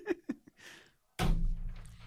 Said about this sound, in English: Hey, and that's the end of the episode. We know it's the end of the episode because there's a knock, knock, knock at the studio door.